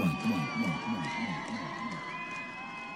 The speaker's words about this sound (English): There's your applause, Frank. Yeah, that's why I always hear it in my head. There's your applause. See, I told you it was there. So that is actually from the trailer and the opening of the film, Freestyle 101.